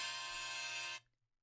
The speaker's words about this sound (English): Oh, and there's the timer.